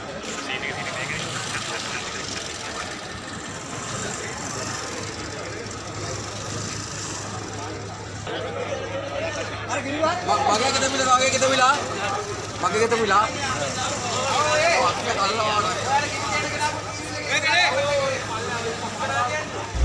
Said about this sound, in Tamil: இதேவேளை இன்றைய தினம் எரிபொருள் கோரி நுகைக்கொட தெல்கந்தவில் ஹைலெவல் வீதியை மறைத்து மக்கள் ஆர்ப்பாட்டத்தில் ஈடுபட்டு வருவதுடன் சில வாகன சாரதிகளும் வீதியின் நடுவே கார்ட்ஸ் விளையாட்டை ஆரம்பித்துள்ளனர்.